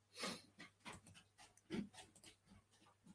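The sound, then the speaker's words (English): A dog named Riley pants in quick, breathy bursts, with a few louder huffs and a faint whimpering edge, continuing steadily for a few seconds without any talking. “Here comes the dog back.”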